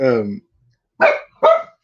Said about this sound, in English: And now this dog is barking. But anyway, I guess he hates nerds too.